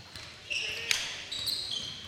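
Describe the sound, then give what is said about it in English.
A basketball is dribbled to the right wing during a game between North Huron and Kingston, with one sharp bounce standing out amid high-pitched sneaker squeaks and a low murmur of crowd noise. “Dribbling to the right wing.”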